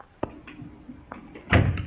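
A door is pushed shut nearby: a couple of light clicks from the handle, then a fuller, muffled thud as it closes, with no one speaking.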